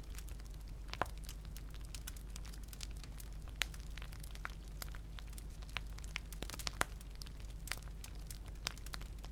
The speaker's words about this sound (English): Here, inside, you are safe, and the soothing, slow-burning logs keep you warm, whilst helping you to slip a little deeper with each crackle.